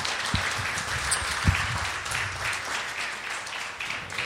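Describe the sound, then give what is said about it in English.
Sustained audience applause for a woman who has just shared her testimony, a dense steady wash of many hands clapping at moderate loudness for several seconds, with a few louder individual claps standing out near the start. “First, let's give her a round of applause for sharing her testimony.”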